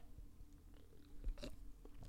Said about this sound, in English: I had to take a sip there.